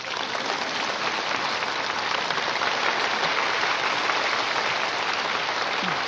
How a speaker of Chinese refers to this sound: 嗯，可以拍手的。